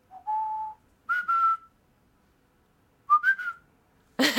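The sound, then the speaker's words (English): A person whistles a short tune, imitating Ichabod growing nervous, that falters, breaking into a few hesitant phrases with gaps between them. The clear tones slide slightly upward, then end in a brief breathy burst. “And then he starts to falter toward the end as he gets a little nervous, and I'll do the falter as well.”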